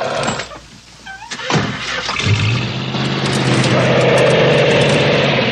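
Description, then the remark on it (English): A few sharp clunks, like a door, give way to a car engine that roars up and holds loud and steady as the partner's vehicle tears away in the film Lone Wolf McQuade, with no talking. “Yeah, so you can hear the partner just tearing off, getting out of there.”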